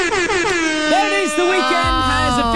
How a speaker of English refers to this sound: It's time, Angus. It's time for the Friday air horn.